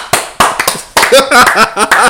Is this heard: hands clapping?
yes